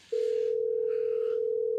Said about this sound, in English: Cool Boys voicemail. Ring, ring, ring. Ring, ring, ring.